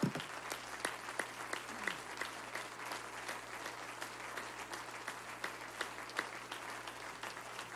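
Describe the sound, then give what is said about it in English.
An audience applauds volunteers on Volunteer Sunday, September 10, 2023, dense overlapping claps forming a continuous rattling wash with occasional sharper individual claps standing out, sustained without pause and with a low steady hum underneath. “Would you please give them another round of applause, expression of appreciation.”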